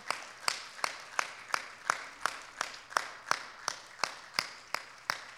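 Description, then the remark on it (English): Steady, rhythmic clapping with about fifteen sharp claps on an even beat, moderately loud and with no talking over it, as an audience applauds the moms standing among them. “Why don't we have all the moms stand tonight, and let's give them a wonderful applause.”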